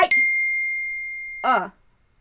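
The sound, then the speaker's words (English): A phone email notification chime rings once as an email arrives, bright and clear, its tone lingering and slowly fading for over a second before a brief voice cuts in. “Okay, an email just popped up on my phone from Reverend White with the subject line in all caps, King Spider, Spider Invasion, answer immediately.”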